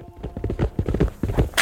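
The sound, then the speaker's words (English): Horses' hooves pound across dry, dusty desert ground in a quick, uneven run of thuds, kicking up thick dust, ending with a short hissing burst. “We got down on the ground as their horses kicked up a layer of thick desert dust.”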